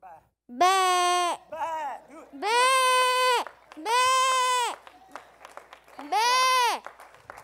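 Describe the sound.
A man imitates a sheep with a series of loud, drawn-out bleats, four long wavering cries plus a short one, separated by brief pauses.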